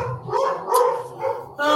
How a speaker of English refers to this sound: Let the dogs speak. You know, it's important we let the dogs have their say as well.